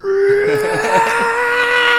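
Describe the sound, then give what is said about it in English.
A loud scream sound effect: a single sustained, high-pitched vocal cry holding a fairly steady tone for about two seconds, with no talking over it. “People like the Wilhelm scream or whatever. I think that other one's better.”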